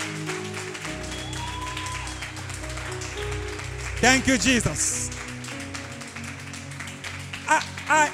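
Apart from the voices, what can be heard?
audience applause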